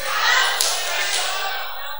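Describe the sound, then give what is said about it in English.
An audience slaps hands in high fives, a dense, continuous wash of smacks lasting about two seconds, with a couple of sharper slaps standing out near the middle. “Slap somebody a palm, bring in high five, say, douse the pressure.”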